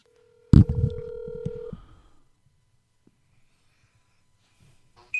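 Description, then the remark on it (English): A phone with a broken screen is being unlocked: its electronic tone sounds once with a sharp click, rings steadily for about a second and fades to near silence. A brief high electronic chirp follows at the very end. “Got to unlock my phone. Come on, screen. I know you're broken, but come on.”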